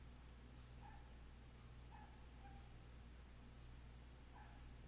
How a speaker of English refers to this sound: And we're joined by a yappy dog down the street. Let's give the dog a moment to shine.